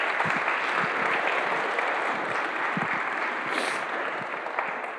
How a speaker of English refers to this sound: So please give yourselves a round of applause for taking that step.